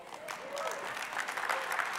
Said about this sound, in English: Some of you clap a little harder.